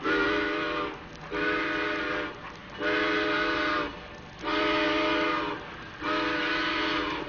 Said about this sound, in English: Hurry up, Frosty. The train is pulling out.